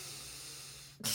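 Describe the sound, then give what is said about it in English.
A voice imitates the heavy breathing of a skinny man sitting next to him in a dentist's office: one long, raspy, hissing breath, then a sudden louder, harsher gust of air at the very end, with no words spoken. “If you're a skinny guy, you shouldn't be a heavy breather.”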